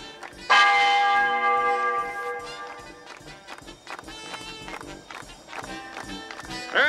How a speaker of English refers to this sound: Ring out the church bells.